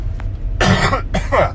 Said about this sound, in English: Excuse me. See, you hear a lot of little coughs. There's the remnants of my flu.